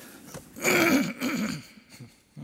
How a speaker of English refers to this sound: I need to have a button that I can push so I can really try to clear my throat.